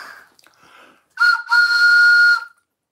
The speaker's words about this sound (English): Right, well, we're going to use this as the bong today. Where's my whistle gone? I thought you had it. I thought I had it. Here it is.